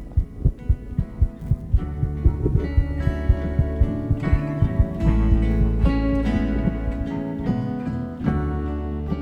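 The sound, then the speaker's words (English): A steady heartbeat, picked up by a worn microphone during a hug, thumps in a regular rhythm, about two beats per second, with a low hum and muffled rustling underneath; no one speaks. “As we hugged, the microphone I was wearing picked up the sound of a heartbeat.”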